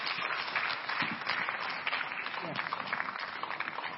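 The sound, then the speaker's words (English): An audience claps for the choristers as they go to take their seats, a dense, continuous wash of applause that holds for the whole stretch, with scattered voices calling out and cheering beneath it. “Let that clapping pull down the ceiling tonight.”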